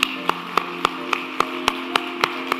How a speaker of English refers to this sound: Let's applaud this day.